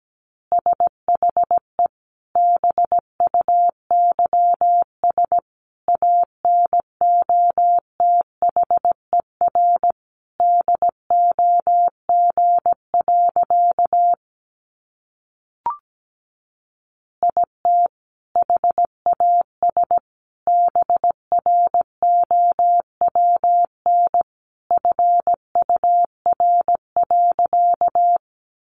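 Morse code practice tones of easy phrases sent at about 17 words per minute: a steady mid-pitched beep keyed into quick dots and dashes in bursts, with a short pause midway and no voices.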